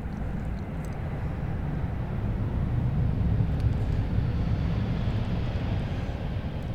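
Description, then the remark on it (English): A steady, low airplane roar passes overhead, swelling slightly toward the middle before easing off, a broad rumble filling the background with no voices. “I'll wait till the plane goes over.”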